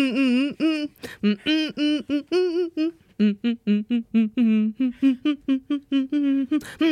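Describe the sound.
A single voice hums a cartoon theme tune as a brisk run of short, punchy notes in a mid-range pitch, separated by brief gaps, with no talking over it.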